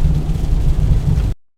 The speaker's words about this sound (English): And it's raining. And it's raining. So, enjoy that.